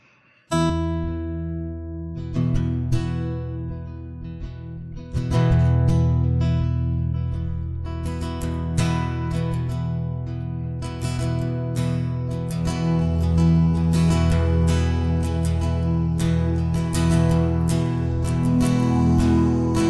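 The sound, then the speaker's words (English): Warm, sustained synthesizer pads, played in a jam for a song about a shipwreck off Malta, hold layered low chords meant to sound like the Mediterranean Sea, swelling gently, with scattered soft percussive clicks over the top and no voices. “I like your pads. They sound very Malton.”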